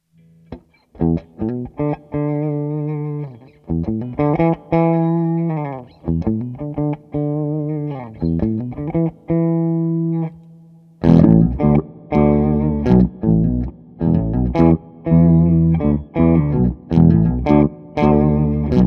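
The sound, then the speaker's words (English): An electric guitar plays a melodic riff through an octave-down pedal effect that thickens it with a lower octave, sounding heavy and synth-like; the second half turns louder and more distorted, with no talking. “All right, now we're going to try the octave below. For real this time.”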